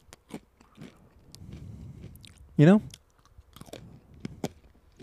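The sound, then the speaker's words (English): Sharp crunching of Dots brand pretzels being chewed in the morning, in a loose, irregular rhythm of crisp bites, with a brief spoken phrase cutting in around the middle. “Little crunchy crunch in the morning is the...”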